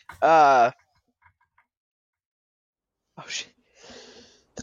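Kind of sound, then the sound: human body sound, sneeze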